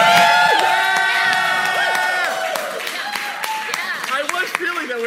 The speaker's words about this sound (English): Can we just cheer for a minute? Because I'm hearing the room next door and I'm starting to get intimidated.